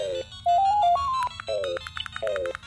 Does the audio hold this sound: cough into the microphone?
no